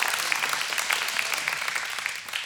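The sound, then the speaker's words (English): A crowd applauds steadily, with dense, bright clapping that holds an even loudness throughout and no voices rising above it. “So if we're going to, it's easy to applaud that.”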